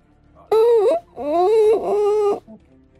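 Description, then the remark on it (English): A giant mimic monster, condensing and curling itself up, whimpers in three loud, drawn-out whines, each wavering in pitch and bending upward, the last two nearly running together before a faint trailing sniff. “And you hear it whimpering.”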